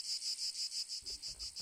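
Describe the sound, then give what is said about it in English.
A cicada's high, buzzing song pulses in a quick, steady rhythm, with a faint low rumble entering partway through. There is no talking. “Cicadas are infamous for their loud songs and their super long periods of hibernation underground.”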